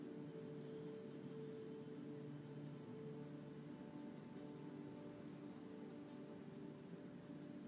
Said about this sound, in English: Rain begins to fall from the sky. slowly at first. I want you to stay exactly where you are, feeling the droplets hit your skin. Watching the rain on the water's surface, making ripples all the way across.